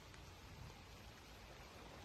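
A steady, dense hiss of heavy rain pours down without pause during flooding on Reservoir Avenue, with a rushing wash of running water beneath it, constant, and no voices.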